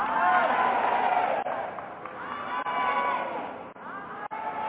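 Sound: audience screaming and cheering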